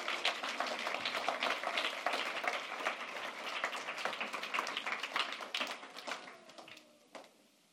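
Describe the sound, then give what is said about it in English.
An audience applauds steadily, a dense patter of many hands clapping at once for several seconds before the clapping thins out and fades toward the end. “Would you give them a round of applause?”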